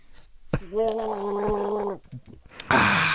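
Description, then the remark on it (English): Someone drinks Coors Light beer, a wet throaty gulping with a drawn-out gargle-like vocal sound, then a short burst of noise at the end. No words are spoken. “Oh, yeah, you sipped that beer.”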